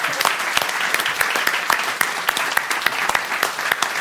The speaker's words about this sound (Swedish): Får jag bara flika in, hur sjukt det är att vi har lyckats fylla en teatersal med människor som ska lyssna på trumlopar i olika tempon. Det är helt otroligt. Ja. En applåd för det faktiskt.